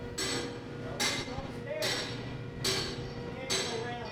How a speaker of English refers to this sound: That's the sound of 10 massive thrusters descending into the water. The Geoides Resolution can stay in one spot without an anchor.